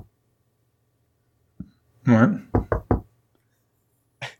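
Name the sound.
knocking on a door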